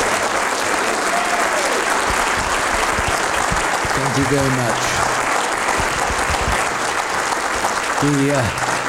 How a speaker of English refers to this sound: So, ladies and gentlemen, one more time for a round of applause for Sir Stirling Moss.